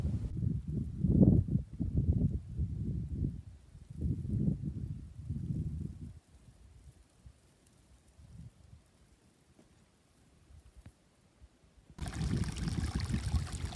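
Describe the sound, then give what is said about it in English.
Water trickles and gurgles over rocks in a small mountain stream flowing down the mountain, partly under snow, to join a bigger river; steady, fading softer midway before a fuller, brighter rush of flowing water returns. “You can see the water is going lower and lower, finding the path down the mountain. And here, it's joining up with a bigger river.”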